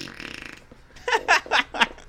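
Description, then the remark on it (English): A buzzy, drawn-out fart noise from a fart buddy novelty device rumbles for about half a second, then four short, louder sputtering bursts follow in quick succession, prominent. “And at any time, if you feel bored during our Evolution Preview, go ahead and buy a new fart buddy and just drown us out with a big...”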